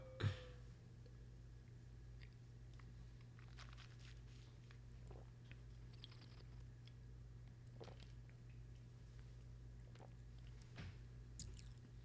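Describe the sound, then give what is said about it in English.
Quiet wine tasting: scattered wet sips, slurps and mouth noises over a steady low electrical hum, with no one talking. “Okay, so now let's taste.”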